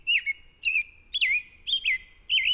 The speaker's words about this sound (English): This American robin will lay one egg per day for 3 to 4 days. To make her eggs, the female robin has to use a great deal of calcium.